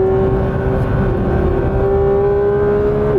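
A Porsche GT3 RS engine screams loudly at high revs, holding a steady, buzzing pitch for a few seconds before dipping slightly at the very end. No one speaks.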